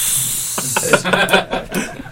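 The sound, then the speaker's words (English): A boiling kettle gives off a steady, loud hiss of steam, with uneven bubbling and rattling pulses breaking through during the second half. “Sorry, well, someone left the kettle on there.”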